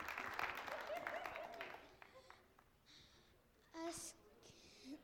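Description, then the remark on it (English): An audience applauds a child from the kids department as she takes the microphone, a dense, steady patter for about two seconds, then the clapping thins and fades as a person begins speaking. “give her a round of applause as she takes the microphone.”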